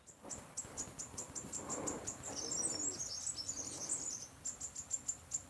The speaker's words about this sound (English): I'm going to run into the garden near those little birds. Can you hear them? Yes. Just hang on. Okay, I'm just going to go to the garden because I want to share these little birds singing with you.